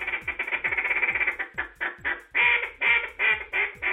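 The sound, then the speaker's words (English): A rapid series of loud, raspy quacks from a duck call blown by the reigning world champion duck caller at a duck-calling competition, starting as a fast rolling chatter then slowing into longer, emphatic honking notes, clear with no talking. “the reigning world champion duck caller and a judge at this year's competition.”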